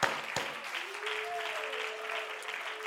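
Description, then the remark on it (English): An audience claps their hands to the Lord together in a dense, steady burst of many hands, fairly loud, with a sustained musical tone humming underneath partway through. “Clap your hands to the Lord together.”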